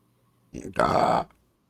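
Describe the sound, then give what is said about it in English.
A single sneeze: a short breathy catch, then a loud voiced burst lasting under half a second before it cuts off into quiet. “Bless you.”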